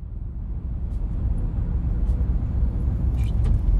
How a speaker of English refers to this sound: Ignition on, engine running, let's go.